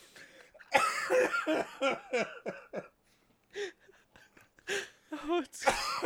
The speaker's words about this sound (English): I tried my hardest not to cough, and my cough got so much worse. And it's like I have like this barking cough